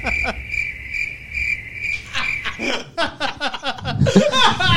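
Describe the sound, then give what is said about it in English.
A steady, high-pitched cricket chirping sound effect trills on its own for a couple of seconds, then people break into chuckles and chatter that mostly cover it. “Fire off the crickets.”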